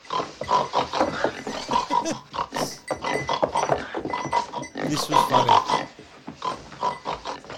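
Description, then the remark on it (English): A woman's voice makes repeated, rapid pig-like grunts and snorts, loud, in a steady string of short bursts, with a brief spoken remark mixed in. “She grunts and turns to him and grunts to him. With a grunty pig face making the noise.”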